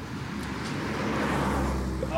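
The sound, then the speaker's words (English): Steady roadway rumble with a broad wash of car noise, loud and continuous throughout, with a man's muffled voice saying a swear word faintly buried beneath it. “And so you couldn't hear it because of the traffic, but he was actually saying fuck.”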